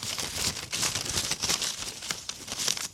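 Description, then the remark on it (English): Continuous crisp rustling of paper slips being shaken inside a fake straw cowboy hat to draw the name of a winner, fairly loud, with irregular crinkly bursts and no voices. “Can you hear the rustling? Yeah. That's a real genuine rustle.”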